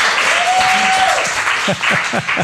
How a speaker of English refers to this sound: Yes, that deserves a hand. Yay.